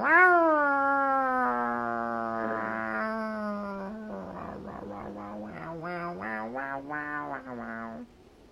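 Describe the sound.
A human voice imitates how a cat sounds on Halloween night: a long, wavering yowl, sustained for about eight seconds, starting high and sliding down, then breaking into a pulsing, warbling stretch before cutting off. Loud, with no other speech.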